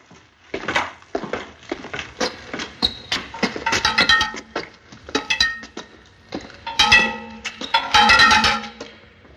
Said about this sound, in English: So I really like the key that is being like dragged against the rail. Oh, yeah. That's a good one.